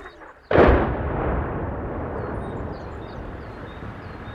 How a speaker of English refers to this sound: And it feels kind of like a remote occupation through Russian drone strikes, artillery attacks as well. So many of the buildings around here devastated.